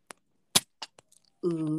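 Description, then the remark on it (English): A few sharp cracks and clicks as the cap of a bottle of Health Aid Kombucha, Pink Lady Apple flavour, is twisted open, one louder snap among them, followed by a brief faint fizzing hiss before a voice exclaims. “I went out and bought this Health Aid Kombucha drink, Pink Lady Apple, and I'm about to open it. Ready for the fizz?”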